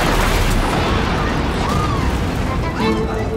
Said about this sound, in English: A huge explosion now, raining debris on all of us. You better get out of the way!